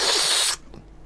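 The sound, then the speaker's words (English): A loud hiss of gas rushing out of a helium balloon for about half a second, cutting off abruptly into near silence. “Helium balloon, that'll help.”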